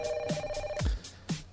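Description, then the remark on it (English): A phone rings on an outgoing call to a man's new cell phone number, a steady electronic ringback tone that holds for a moment then stops, with a few soft rhythmic thumps behind it and no talking. “So I think I'm going to give him a call.”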